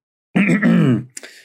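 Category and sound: human body sound, forced cough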